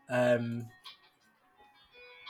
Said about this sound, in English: My phone's ringing. Let's just ignore that. Can you hear this ringtone?